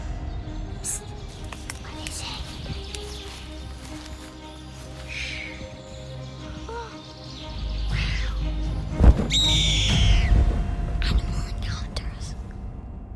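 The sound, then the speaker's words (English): A short produced jingle introducing an animal encounter story segment, layered with bird chirps, animal calls and whispery voices, building to a louder burst of effects near the end before settling. “Let's roll the jingle.”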